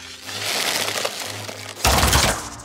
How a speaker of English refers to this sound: One of your Ashen Phoenix assassins falls, and you can hear him clink down the roof, and his body hits the ground.